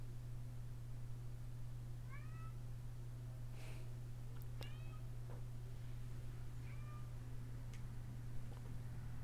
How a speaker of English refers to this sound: So if y'all hear a cat, that's my cat whining at the door, and I'm very sorry. No. He's not happy. He's not happy with me.